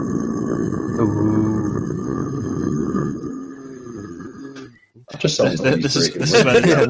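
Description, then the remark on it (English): A deep, guttural deathcore-style vocal growl by a former deathcore band vocalist rumbles steadily for several seconds, then breaks off briefly before a harsher, raspier growl bursts back in louder. “Let's get a nice little low growl.”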